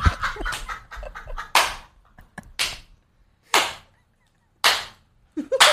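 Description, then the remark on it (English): Four sharp, loud hand claps, made to sync the audio, ring out one at a time, about a second apart, each a crisp bright crack with a short decay, after a brief burst of clattering noise at the start. “Fucking claps, yo.”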